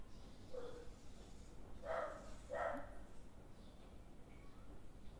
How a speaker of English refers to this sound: I can hear a dog barking.